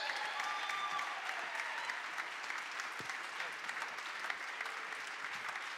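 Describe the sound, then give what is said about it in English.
A church audience at Pursuit Northwest, on its feet, claps steadily to welcome the pastor in a dense, continuous wash of applause, holding at an even loudness for several seconds with faint voices mixed in. “Would you please jump up to your feet, put your hands together, give a warm pursuit welcome to my pastor,”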